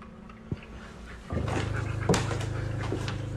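A dog not wearing a shock collar pants and whimpers, its high whining tone growing steadier and louder after a short quiet start, with a sharp bark-like yelp near the middle. No one speaks.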